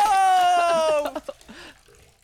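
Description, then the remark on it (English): A steady, slowly falling tone gives way to a short cluster of watery splashes, a person dropping into a pond and churning the water briefly before it quiets. “I'm splashing around.”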